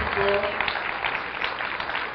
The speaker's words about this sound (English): Oh, yeah, keep clapping. Yeah. So keep clapping until it's not awkward. Gets weird for everybody.